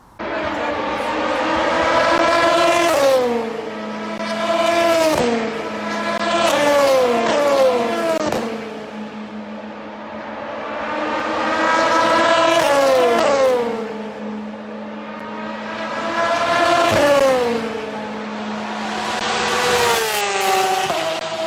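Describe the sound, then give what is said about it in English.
Loud race car engines roar past on the track at Le Mans, their pitch climbing through gear changes and dropping as they pass, with several cars sweeping by in waves and no talking. “Anyway, enjoy some amazing noises from Le Mans last year, and maybe Sebring.”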